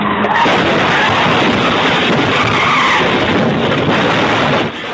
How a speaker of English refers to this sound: Some shocking footage out of Detroit today of a violent crash between a bus and an SUV that runs a stop sign.